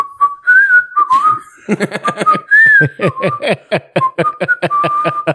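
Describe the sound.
Someone whistles a short, wandering melody, clear and fairly loud; partway through, quick rhythmic breathy bursts, almost like stifled laughter, chop in beneath the whistled notes.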